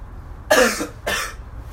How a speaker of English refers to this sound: just coughing after that.